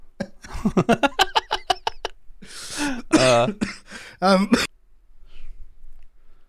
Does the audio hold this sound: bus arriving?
no